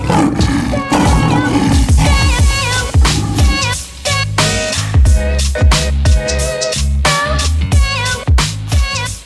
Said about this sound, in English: Now, a moment to roar.